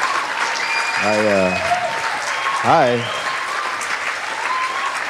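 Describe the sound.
Steady, dense applause from a live audience at the Comics Lounge as comedians two performers are welcomed to the stage runs through the whole stretch at an even loudness, while a man speaks briefly over it twice.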